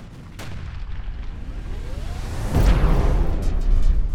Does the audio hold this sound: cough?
no